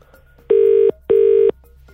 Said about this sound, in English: Computer, please choose a random Greg's for us to call. I'm very excited about this. It's ringing. Here we go.